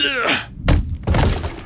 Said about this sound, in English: Desperate, he grabbed a small coffee table and hurled it against the window.